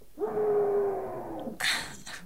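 A person screams into a pillow: a muffled, sustained scream lasting over a second, steady in pitch and dulled by the pillow, followed by a short rough breathy burst.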